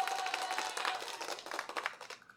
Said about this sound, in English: Where is my applause? Okay. That's what I was looking for.